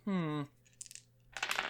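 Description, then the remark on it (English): A short spoken sound, then dice clatter on a hard tabletop: a few light clicks followed by a quick, dense rattle as they tumble and settle. “Well, for me, the dice have spoken.”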